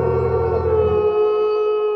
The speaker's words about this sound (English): Now, every wolf howl is impressive, but this one was particularly intimidating. Scholars say that it sounded like a group of 100 wolves howling at the moon at the same time.